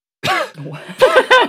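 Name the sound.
imitated cough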